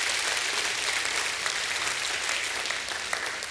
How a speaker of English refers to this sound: Give God a hand clap of praise anyway. Amen.